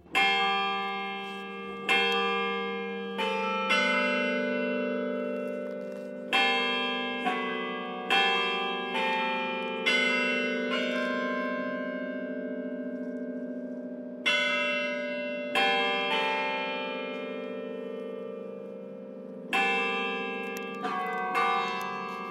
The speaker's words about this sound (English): Not far from the BYU Broadcasting Building is the BYU Carillon Tower, full of the bells that all the students hear every single day, tolling the hour